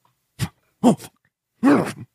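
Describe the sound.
A voice imitates snoring with three rough, snorting bursts, the first short, the last longest, each a low throaty groan with a rising-then-falling pitch and brief silences between.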